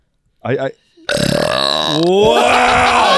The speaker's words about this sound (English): Should we have an impromptu burping contest? I mean, yes.